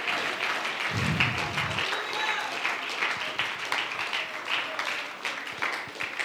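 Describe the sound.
An audience claps hands in a dense, steady wash of applause lasting several seconds, with a brief low rumble near the start and voices murmuring underneath.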